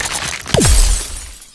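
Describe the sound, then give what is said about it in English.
A loud burst of shattering glass erupts with bright, splintering high tones, joined by a quick downward whooshing sweep, then the crash fades out over about a second with no voices. “Somehow, the creature turns the water into glass and shatters it.”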